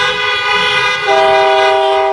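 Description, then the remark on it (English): Several car horns blare together in a loud, continuous honk lasting about two seconds, the combined tone shifting pitch partway through as different horns join in, sounded by a church audience gathered in their cars outside to show their excitement. No one speaks. “If you're happy to be gathered here, outside of your home, some of you even outside of your pajamas for the first time in a good while, please show your excitement to be gathered as the church. Honk your horn, flash your headlights.”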